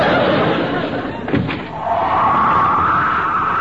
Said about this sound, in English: Oh, that door. Every time it slams, the place shakes.